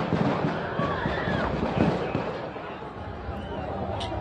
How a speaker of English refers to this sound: That's the gunfire in the background. And people start screaming and people start running.